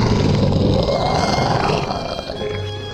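A deep, rumbling growl from the wolf Fenrir rolls on steadily for about three seconds, loud and gravelly, easing slightly toward the end with no voices present.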